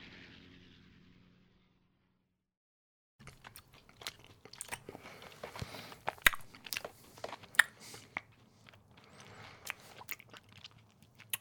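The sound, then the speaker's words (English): Someone chews on a piece of chocolate, producing a steady stream of crunchy, crackling bites and wet mouth sounds, fairly loud, following a brief low hum and a moment of silence. “I'm eating my last piece of chocolate.”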